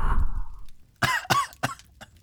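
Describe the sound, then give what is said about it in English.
A low rushing breath fades out, then three harsh coughs burst out in quick succession after smoke is blown in the face, the last one slightly shorter, with no talking. “you gotta cough to get off, and I pass out.”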